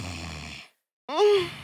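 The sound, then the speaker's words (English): A voice imitates a sleeping man's loud snore: a rough, rumbling inhale, a brief pause, then a buzzy, rising snort. Fairly loud, with no other sounds around it. “Now, he had the wildest snore I ever heard in my life.”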